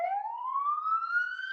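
A police car siren wails loudly as the car comes through, its tone sweeping steadily upward in pitch over a second and a half, with no voices over it.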